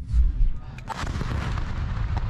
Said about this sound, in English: Here is the beginning of the military operation that they performed. This is where they're actually breaking through the wall, and you're going to see them invading a military post and shooting as many people as possible, obviously.